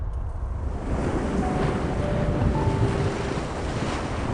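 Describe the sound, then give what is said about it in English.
Large ocean waves crash and churn in a steady, loud roar, with gusting wind buffeting the scene and no voices present. “Overlooking the mast to the waves crashing below.”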